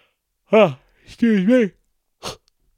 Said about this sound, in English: Pardon me. I fucking yawned there.